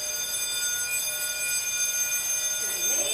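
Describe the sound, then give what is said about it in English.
A fire alarm in an institutional building rings continuously at a steady, fairly loud level, its shrill electronic tone holding unchanged from start to finish, with faint voices or movement near the very end. “Yeah, as usual, the alarm is going off and everybody's just sitting stationary waiting for it to stop.”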